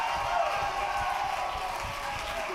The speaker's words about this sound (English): I just think there's some ladies in here tonight, don't even feel like screaming, but you just go, woo, one more time and glorify God.